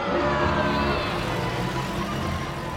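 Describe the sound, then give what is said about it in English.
A vehicle engine rumbles steadily and loudly throughout, like a car driving, with a constant low drone and a faint rising whine. No one speaks. “So you're in your Jeep. Or one of those plastic bubble cars like the film. You're cruising around the grounds”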